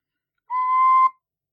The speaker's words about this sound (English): I have a tin whistle on my desk, though, so I can make squeaky noises.